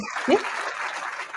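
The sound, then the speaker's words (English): A crowd applauds steadily, a dense wash of many hands clapping at an even level, with a brief low vocal sound or whoop near the start. “Extended applause.”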